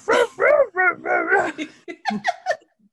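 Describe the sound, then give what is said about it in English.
A human voice imitates a dog barking, as a dog named Buster narrating Lassie, a quick run of loud woofs and yaps that trail off into shorter, clipped yips. “to hear a dog just narrate, this is Lassie by Penguin, read by Buster.”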